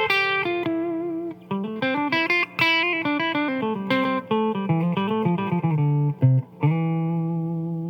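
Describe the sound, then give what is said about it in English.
An electric guitar with a gritty, effected tone plays a major pentatonic lick with an added fourth: a quick run of notes stepping up and back down, ending on a sustained note, with no talking. “And then add in a fourth.”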